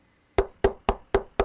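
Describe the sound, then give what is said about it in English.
Five quick, evenly spaced, firm knocks on a door, each a sharp rap with a short hollow ring, with no voices. “If I knock, maybe she'll”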